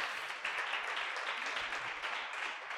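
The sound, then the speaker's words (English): A church audience gives a clap offering to the Lord after a prayer: many hands clap together in a dense, continuous wash of sharp claps that holds at an even volume throughout. “Can we give a powerful clap offering to the Lord?”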